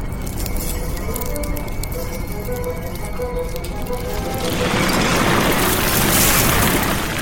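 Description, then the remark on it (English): A steady, heavy rumble with rattling and faint creaking tones, swelling into a louder, denser roar partway through, as a building trembles and shakes, furniture shifting and chandeliers shaking, following the Nut Owl through the building. “Rumbling follows the Nut Owl through the building, causing furniture to shift and chandeliers to shake”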